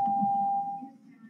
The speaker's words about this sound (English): And that beep at the end is them cutting her off because that's what happens at these school board meetings.